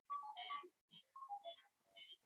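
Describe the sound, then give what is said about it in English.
A mobile phone ringtone plays a bright, melodic electronic jingle: short descending note phrases, repeated twice with a brief pause between, fairly quiet and with no talking over it. “That's my ringtone.”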